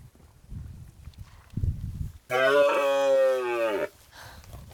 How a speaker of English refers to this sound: So what's he saying there? That's rutting behaviour, that's roaring. Oh, right. He should only do that September, October, but there must be a hind in season.